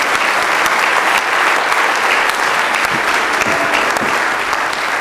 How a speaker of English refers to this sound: I think we ought to give the Lord. Give one for him, clap of praise.